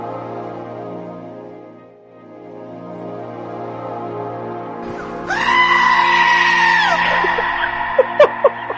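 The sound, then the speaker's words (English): A goat lets out a long, loud, screaming bleat that starts around midway and wavers for a couple of seconds, with a low steady hum underneath and a few short sharp cries at the end. “The karma goat.”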